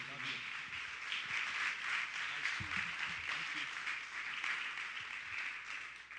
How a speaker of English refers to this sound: Why don't we, before we're seated, why don't we give God a big hand clap of praise this morning?